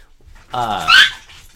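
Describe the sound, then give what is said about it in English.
A single loud, harmonic squawk from an overstimulated dog, rising into a shrill, strained peak before cutting off, with no talking over it. “this dog that I just mentioned, Chloe Dim Song Wong, you just heard her squawk”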